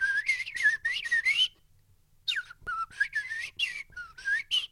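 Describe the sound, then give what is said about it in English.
A human voice imitating blackbird calls, then shaped with technology: rapid, fluting whistled phrases, rising and falling in pitch, in two loud bursts separated by a short pause. “I just mimicked them and then used technology to shape my voice.”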